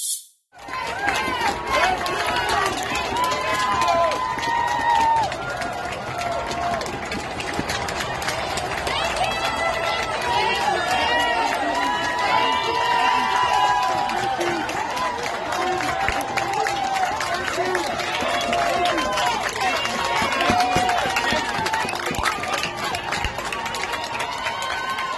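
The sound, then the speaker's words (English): A large crowd at a mass gathering of thousands of non-socially distanced people cheers and claps continuously, with nurses among those applauding; a dense wash of applause mixed with many overlapping voices and shouts that stays steady and loud throughout. “These are the heroic nurses, the ones who were recording TikTok videos, and now they're applauding as thousands of people violate social distancing.”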